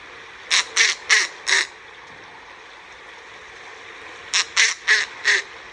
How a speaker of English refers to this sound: Snowy owls are usually silent, except on the nest, which they defend fiercely, even against large predators, including wolves. Here's a typical call.